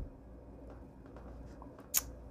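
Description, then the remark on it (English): A craft blade slices through scrapbook paper, cutting a piece off, in one brief, crisp, hissy scrape near the end, preceded by faint soft rustles over a low steady hum. No one speaks. “And now I'm just going to cut down here and cut that piece off.”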